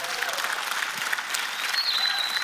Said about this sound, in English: If you were here last week, clap your hands and let me know.